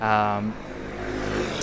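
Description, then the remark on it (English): Motorbikes pass by in 25-degree heat, starting with a loud buzzing engine whine that soon gives way to a steady, rumbling wash of traffic noise lasting under two seconds. “Pause for motorbikes, of course.”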